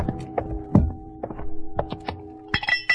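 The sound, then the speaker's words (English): A handful of sharp knocks and clinks of small objects dropping into a blind beggar's tin cup that holds a stack of pencils, spaced irregularly and ending with a brighter metallic ring. “A beggar sitting with his legs folded, and on his lap a tin cup with a stack of pencils.”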